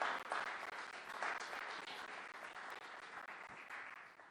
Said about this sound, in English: Yeah, let's clap for that.